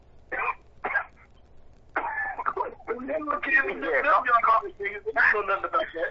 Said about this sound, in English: Yeah, cough up that COVID, man. Whoever's coughing it up.